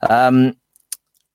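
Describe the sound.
A brief voiced sound from a person, then a few quick, dry computer mouse clicks, small taps with the last one a little louder, and silence between them.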